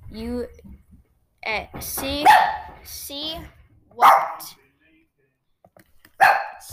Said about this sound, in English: Sorry, the food came, so my dogs are barking, everything went crazy.